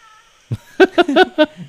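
A few short, harmonic cat yowls in a quick run, loud, ending with a lower murmur, from a group of cats mating on the street, with no talking.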